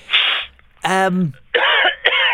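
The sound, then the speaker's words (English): A loud bout of harsh coughing on air: a rough burst, then a strained, voiced hack, followed by two more raspy coughs in quick succession, with no talking. “Right, try not to cough on air. It's a bit disgusting.”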